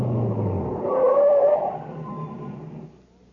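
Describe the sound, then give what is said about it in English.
A truck engine rumbles as the vehicle rolls along, a brief squealing whine rising over it, then the motor noise winds down and fades as the truck pulls to a stop by a reactor equipment building. “No, stop here, by the reactor equipment building. What for? Just stop the truck.”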